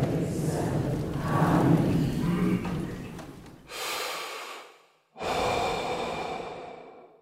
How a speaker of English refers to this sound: heavy breathing and the nerves in my stomach. The audience could see that we were scared.